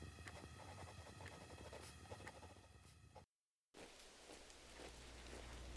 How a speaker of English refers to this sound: Oh, Christ, it was another day of freezing rain and sleet.